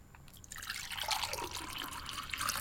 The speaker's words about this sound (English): you kind of just put a little splash in the bottom of the vessel in the end.